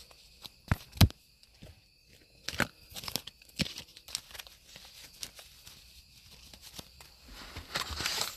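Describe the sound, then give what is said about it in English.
The final shuffle of a deck of spiritual oracle cards before a card reading, with irregular papery slaps, riffles and crinkling rustles, a few sharper snaps standing out, ending in a denser burst of card noise. “Alrighty, last shuffle.”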